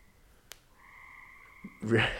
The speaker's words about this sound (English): And you can you hear the frogs, everybody? Listen to the frogs.